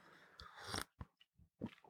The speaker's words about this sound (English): Let's have another sip together, a little sip of coffee.